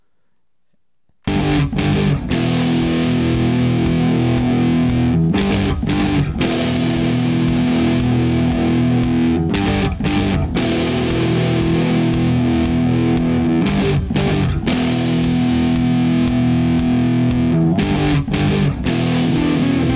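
A metal song played through a vibrating dildo: a loud, harsh, buzzing drone of low pitched notes, broken by regular rhythmic stutters, starting after a second of silence with no talking.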